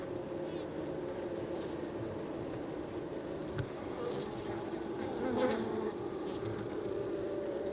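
A dense, steady drone of many honeybees buzzing around hive colonies at Aspen Ridge Greenhouses in central Alberta, a continuous layered hum that swells slightly in the middle with no pauses.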